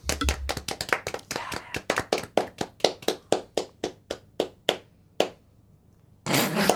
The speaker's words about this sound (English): He's applauding himself.